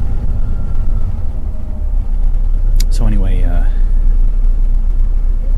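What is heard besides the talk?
bus engine rumbling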